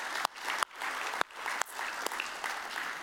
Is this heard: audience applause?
yes